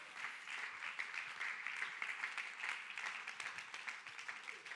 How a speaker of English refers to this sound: Oh, let's clap our hands if we believe that right now.